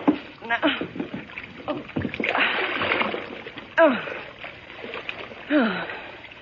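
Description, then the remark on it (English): A body plunges into a low, water-filled tub with a heavy splash, followed by sloshing and thrashing, while strained voices and gasps sound, in the Boston Blackie story. “Thanks for falling into the water”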